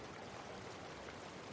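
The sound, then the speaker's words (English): A rushing waterfall roars steadily in a gigantic space of light, waterfalls and rainbows, a dense, unbroken wash of water noise that stays even throughout, with no voices. “it's a gigantic space of light and waterfalls.”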